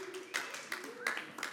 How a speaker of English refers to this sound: A couple of golf claps right there.